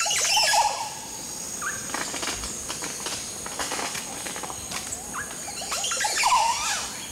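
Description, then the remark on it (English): An oropendola, hanging head downward and swinging by its feet, sings: bursts of liquid, gurgling swoops at the start and again near the end, with scattered sharp clicks and whistles between, over a steady hiss. “Our Oropendola is now suspended head downward, swinging by his feet, singing.”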